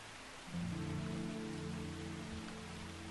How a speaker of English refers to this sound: Night's dark clouds. Weep down great tears of rain upon a small campsite hidden amongst the foliage.